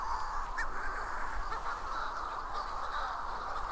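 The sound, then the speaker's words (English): A dense, unbroken chorus of many seabirds calling at once in the dark, harsh overlapping cries blending into a steady, loud wall of sound with no pauses and no voices. “My God, the sound of the sea has been replaced by the sound of seabirds.”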